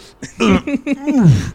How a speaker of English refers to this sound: Burping.